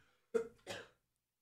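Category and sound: human body sound, cough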